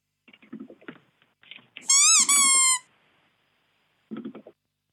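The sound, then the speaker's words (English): A seat squeaks as it is sat on, giving one loud, drawn-out, high-pitched squeak lasting about a second and wavering slightly in pitch, with muffled voices talking just before and after it. “it squeaks when we both sit on it”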